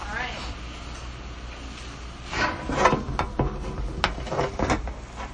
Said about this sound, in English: We're hearing pages turn.